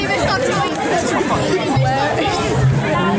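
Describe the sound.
A dense wash of crowd chatter, many overlapping voices murmuring at steady volume, continuous, as a large audience at a hockey match leaves its seats and pours out because food has just been served.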